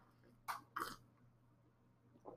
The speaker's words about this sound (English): Let's take a sip before we continue.